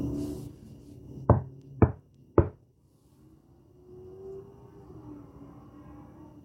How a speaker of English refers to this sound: We're going to knock again 3 times.